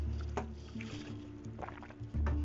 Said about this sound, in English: Sorry, I had to drink water.